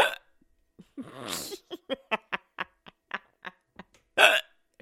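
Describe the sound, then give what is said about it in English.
A run of a dozen or so sharp hiccups in a fairly steady rhythm, with a drawn-out breathy vocal sound near the start and a louder rushing breath near the end. “I have the hiccups.”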